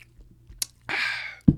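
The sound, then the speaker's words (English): A quick sharp click, then a breathy slurping sip of a Celsius energy drink lasting about half a second, followed by a dull low thump. No talking. “I'm kind of drinking a Celsius fucking energy drink.”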